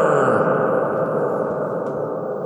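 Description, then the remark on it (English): A loud, smeared reverberant wash from a shouted voice, a reverb effect applied live from a sound board, hangs in the air, sustaining evenly and barely fading across a few seconds with no distinct words. “Wow, that reverb just ain't dying.”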